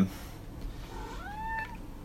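A single cat meow, a short rising, drawn-out cry that swells and then fades, heard fairly quietly over a low background rumble.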